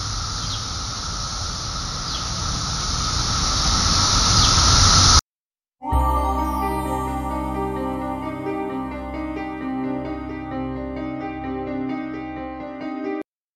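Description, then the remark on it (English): A loud, dense chorus of massed cicadas drones steadily with a high-pitched whine for about five seconds, then cuts off; after a short silence, sustained music begins. “That's right, we're talking about cicadas on tonight's episode of the Hometown Haunts podcast.”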